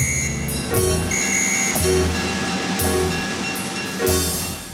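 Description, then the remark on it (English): A train rumbles steadily, with heavy rhythmic clunks roughly every second and thin, high metallic squealing tones drifting over the noise. No one speaks. “Then I hailed a cab to the station and made it there just in time for the very last train.”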